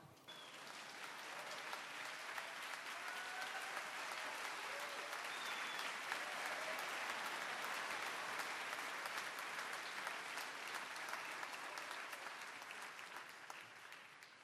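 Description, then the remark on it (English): A large audience claps steadily and loudly for about fourteen seconds for Samson the dog after he finds his cat, a dense sustained wash of applause with a few faint whistles or cheers mixed in before it gradually thins at the end. “Give Samson a round of applause after he finds his cat.”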